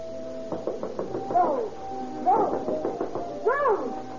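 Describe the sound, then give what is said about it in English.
A quick run of about six sharp knocks on a bedroom door at about 10:30 in the evening, fairly loud, followed by a voice calling out three times in rising, urgent shouts, demanding to be let in. “About 10:30 in the evening, there is another knock on the door.”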